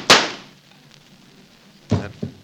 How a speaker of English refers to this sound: Perhaps we shouldn't have shot that chap.